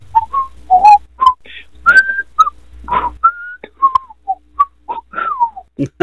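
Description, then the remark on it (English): Someone whistles the theme tune of The Andy Griffith Show, a bright, bouncy tune with a run of short notes and a few held ones moving up and down in a steady rhythm, with no talking. “They used to, how did that whistle?”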